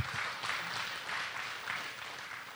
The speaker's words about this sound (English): Amen. Amen. Give it a hand clap, right? That's good.